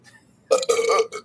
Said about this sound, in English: I'm going to burp.